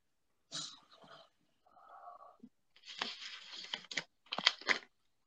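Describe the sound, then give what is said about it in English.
A paper package is torn open up close, with several short, scratchy ripping and crinkling bursts separated by brief pauses, louder toward the end. No one speaks. “Let me see which one I should open first.”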